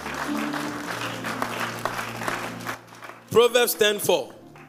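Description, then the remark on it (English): A church audience claps for the Lord for a few seconds during a sermon, a dense wash of hand claps over a low sustained musical tone, which fades as a single voice starts talking. “Give the Lord a mighty clap of hands.”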